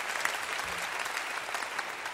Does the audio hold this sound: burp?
no